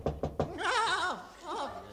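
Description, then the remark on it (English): Three quick, evenly spaced knocks on a door, fairly loud, followed by a wavering, bleat-like vocal sound that trails off and briefly returns. “That must be the Prime Minister at the door.”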